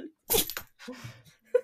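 A cat sneezes once, a sharp burst of breathy noise, followed by a few soft snuffly exhales and a small squeak.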